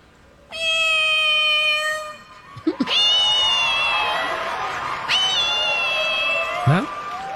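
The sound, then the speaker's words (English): A person convincingly imitates a cat, making loud, drawn-out meows: one long wail, then two more with sliding pitch, over a faint background hum. “I would love to mimic a cat.”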